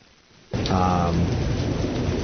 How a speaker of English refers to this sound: So all this rain, blame it on the rain.